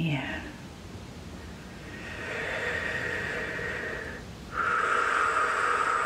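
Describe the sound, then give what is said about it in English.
Slow, deep breaths: a long airy inhale swelling over a few seconds, a brief pause, then a strong, breathy exhale. No other sounds around it. “Deep breath.”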